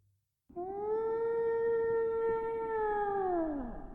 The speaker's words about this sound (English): And this is a blue whale.